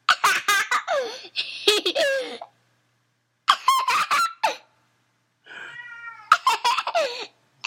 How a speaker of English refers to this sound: You can hear Spot in the background, the silly kitty thing.